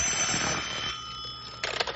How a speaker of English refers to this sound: Phone's ringing.